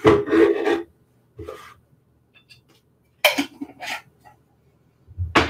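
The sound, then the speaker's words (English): Several short scraping, rasping strokes, like a spoon digging about two tablespoons of solid coconut oil and tapping it into a blender, with brief quiet pauses between them. “I have some coconut oil here. I'm gonna do like 2 tablespoons.”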